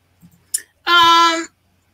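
computer mouse clicking

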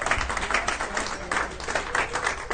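audience hand clapping

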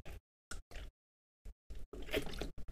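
drinking water

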